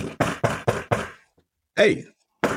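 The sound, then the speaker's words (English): Five quick, evenly spaced knocks on an office door at the Newhouse School in Syracuse in August 1975, fairly loud, followed after a short pause by a brief vocal sound and another sharp onset. “a famous knock came at my door.”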